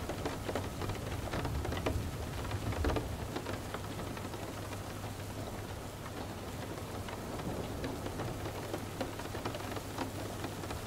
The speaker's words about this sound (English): Your body becomes more relaxed with each raindrop that you hear.